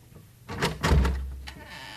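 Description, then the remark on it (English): A door is jiggled, found unlocked and pushed open, with a couple of clunks and a low rumbling scrape as it swings, then quiet room tone; no one speaks. “Try the door.”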